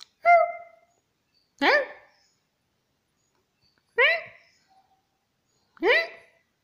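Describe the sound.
A person imitates a small dog's yappy bark, four short high yips spaced a couple of seconds apart, clear, with silence between them.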